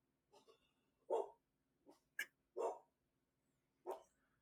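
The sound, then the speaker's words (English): A dog barks in short bursts, about five or six sharp barks with uneven gaps, loud, with a low steady hum underneath and no talking. “The joys of having a dog, everybody.”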